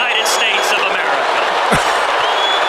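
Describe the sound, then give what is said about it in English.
A large convention crowd in an arena roars continuously, a dense wash of shouting and screaming voices that stays loud and unbroken throughout, with no single speaker standing out; the crowd is screaming for Ted Cruz, not booing, as Donald Trump enters the arena. “They're not booing. They're screaming, Cruz.”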